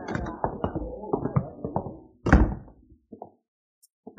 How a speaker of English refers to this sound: Come on. Come on, come on. Get that office door open.